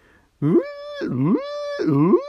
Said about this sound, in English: Yeah, can you hear the klaxon sounding?